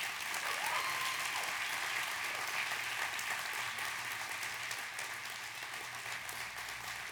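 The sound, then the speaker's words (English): Sustained audience applause, a dense wash of many hands clapping at steady volume for several seconds, with a faint whistle near the start and no talking over it. “No, like, really clap for him.”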